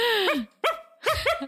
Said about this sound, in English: …, are you barking in the back seat? …, are you a dog? What are you doing?